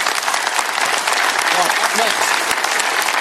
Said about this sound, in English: Oh, yeah, give him a round of applause.